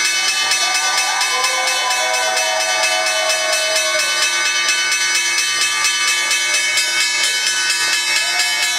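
The last stock exchange opening bell of 2022 rings loudly and continuously for several seconds, a rapid metallic clatter with a bright, steady tone, while faint cheering and whoops rise beneath it.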